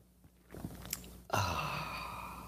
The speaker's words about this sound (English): Fill it with your favorite liquid. I like coffee. And join me now for the unparalleled pleasure, the dopamine hit of the day, the thing that makes everything better. It's called the simultaneous sip. It happens now. Go.